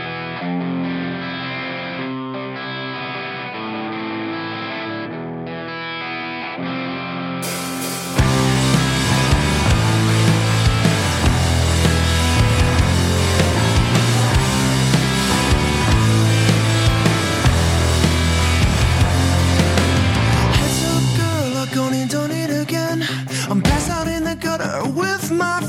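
A rock song opens with a quieter, thinner intro, then a full band with distorted guitars and heavy bass bursts in loudly, driving steadily before thinning out briefly near the end.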